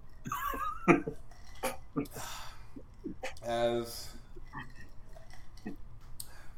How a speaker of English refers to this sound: Well, all right. In that case, let me clear my throat.